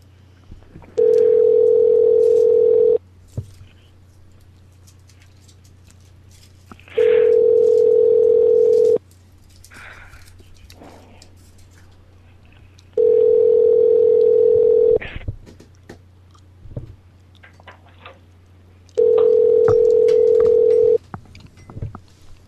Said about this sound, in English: Okay, so this is 7-Eleven ringing.